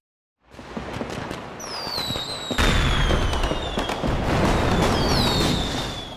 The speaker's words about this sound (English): It was called Tet, a Buddhist holiday complete with firecrackers and celebration.